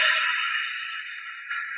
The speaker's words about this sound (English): So we'll of course breathe first. So just take a deep breath in and slowly exhale.